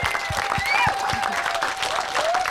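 An audience bursts into steady applause, a dense wash of many hands clapping at a fairly loud, even level, with a few whoops and scattered voices rising over it.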